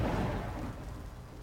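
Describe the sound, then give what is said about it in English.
A deep, rolling rumble of thunder over a steady wash of rain, from the trailer of the movie Acrimony, loud at first and gradually fading, with no voices. “Rainy Day Sunday, apparently, in this movie.”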